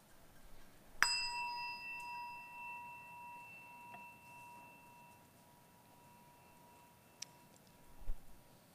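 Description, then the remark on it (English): A single bright chime, rung as a weekly practice, is struck once and rings out with clear sustained tones that slowly fade over several seconds, followed by a few faint ticks. “Each week, we ring. As we listen to the chime, let us remember our connection to each other and the world around us.”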